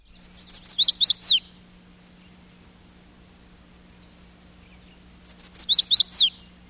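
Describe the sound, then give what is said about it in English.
A chestnut-sided warbler sings its mate attraction song twice, each phrase a quick run of bright, high whistled notes, clear, separated by a few seconds of quiet over a faint steady hum. “This song, the chestnut-sided warbler's mate attraction song, is transliterated in field guides this way.”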